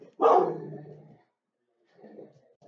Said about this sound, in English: That's good podcasting right there with dog barks.